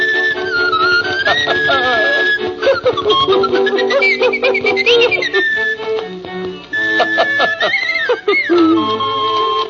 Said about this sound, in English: All right, would you please give me my cuckoo bird music? Will you please?